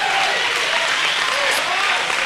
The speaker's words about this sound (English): You ought to give God a hand clap right now.